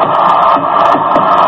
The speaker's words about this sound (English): The sellout crowd is cheering Henry Aaron, the home run king of all time, 715.